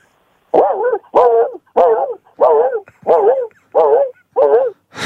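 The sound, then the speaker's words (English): A person imitates the howls of three Siberian huskies at once: about eight short, wavering yowls in a steady rhythm, loud, with brief pauses between them and no talking. “The Alaskan Huskies, right? Okay, can you give us that? Siberian.”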